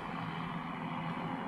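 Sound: helicopter passing overhead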